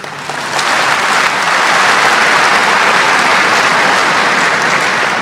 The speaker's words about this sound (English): Dr. Zakir Naik, congratulations and best of luck for starting Peace TV. I request all the audience to give him a big clap.